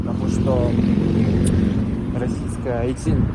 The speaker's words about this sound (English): At another moment, we could hear motorcycles rumbling past, like he was on the street, walking home.